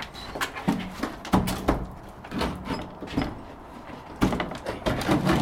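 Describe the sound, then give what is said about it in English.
A hinged door into a mushroom room being tugged and pulled open, giving a string of irregular heavy thuds and rattling knocks with scraping between them, fairly loud, and no voices. “Well, the hinges come this way, look. I'm determined to get this open.”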